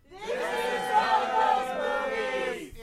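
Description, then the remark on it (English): An audience member at a live show at Dynasty Typewriter in Los Angeles lets out a loud, sustained sports-fan cheer, a single steady-pitched yell holding for nearly three seconds over faint crowd noise before cutting off. “Sounds like somebody thinks they're at a Chiefs game.”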